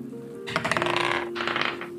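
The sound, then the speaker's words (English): Real dice rattle and clatter across a table in two quick bursts of small, hard clicks, moderately loud over a faint steady hum, with no one speaking. “I'm gonna use my real dice this time.”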